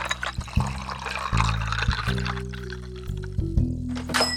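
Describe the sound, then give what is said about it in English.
Room-temperature water pours steadily into a glass, a gurgling stream whose hollow resonant tone climbs in steps as the glass fills, lasting about four seconds with no one talking. “And time to get that room temp water.”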